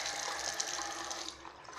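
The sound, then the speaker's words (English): Water pours steadily into a glass for a couple of seconds, a continuous splashing trickle with no one speaking. “Excuse me, I need some water.”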